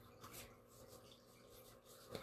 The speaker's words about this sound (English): So that's the question. So I am mixing up the deck here.